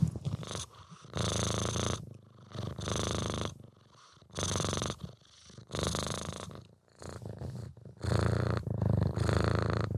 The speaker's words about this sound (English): Oh, we can hear them purring.